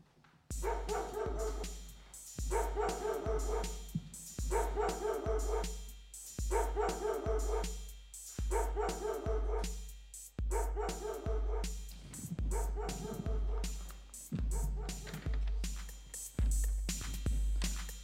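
A dog named Bob at a granny's house barks loudly, letting out a long series of repeated barks in a steady rhythm, roughly one every second or two, with no one talking.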